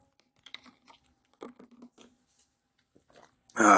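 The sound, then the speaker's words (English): Quiet clicks and handling of a blue can of low-carb Monster energy drink, then a short pause and a sudden loud slurp or gulp at the end as someone sips from it. No one speaks. “Yeah, okay, I'm going to take a sip of Monster right now.”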